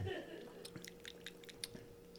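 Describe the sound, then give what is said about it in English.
Someone takes a quiet sip of a two-ingredient Kahlua coffee cocktail, a cluster of small wet slurps and lip clicks over about a second against a soft steady background hum. “I can sip it.”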